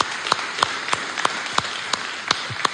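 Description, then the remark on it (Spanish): Audience applause: a crowd claps in a steady, even beat, with about eight sharp, loud claps standing out over a constant wash of scattered clapping noise. No one speaks. “Un aplauso, ¿sí?”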